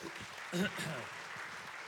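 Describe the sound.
An audience at a service claps in a steady, dense patter that fills the whole two seconds, with a brief voice rising over the applause early on before the clapping carries on evenly.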